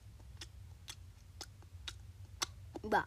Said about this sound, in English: Lately, they just sat around and chewed.